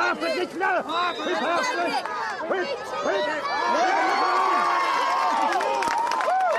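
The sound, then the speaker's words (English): A large crowd from the Ladies' Bridge and Ballymacoda community shouts and cheers all at once at a county final, many overlapping loud voices, swelling into a sustained roar in the second half with a few drawn-out yells above it. “This time, her eldest son is here shouting with the rest of the Ladies' Bridge and Ballymacoda community.”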